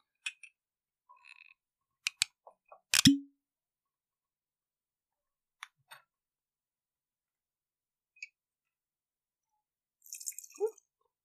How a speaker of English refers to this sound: A little heavy-handed on that pour. Don't make me cut you off already.